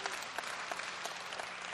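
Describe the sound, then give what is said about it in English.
An audience claps steadily, a dense wash of many hands with no break in the rhythm and no voices rising above it. “Keep clapping, I'll have a drink of coffee.”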